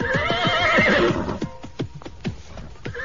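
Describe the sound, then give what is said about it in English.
A horse gives a loud, wavering whinny as its rider pulls it up and dismounts, then hooves clop in a slow, uneven rhythm as it settles. No one speaks. “I pulled up my horse and dismounted.”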